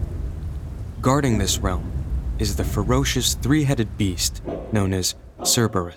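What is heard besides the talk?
heavy rain with thunder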